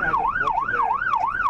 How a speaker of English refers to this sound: Weaving through traffic outside Crown Casino, the red and blue lights and blaring sirens have the desired effect. Motorists who see it coming pull over.